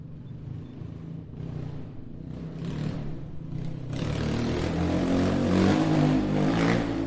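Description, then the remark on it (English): A rally car or truck's engine drones steadily near Cafayate, Argentina, then swells into a louder, rougher roar partway through as it drives past on a route with fine dust, with gritty clatter over the low rumble. No one speaks. “I switch between the 70 to 200 and the 2470 on the cars and trucks, take advantage of them breaking through the shadows here and there.”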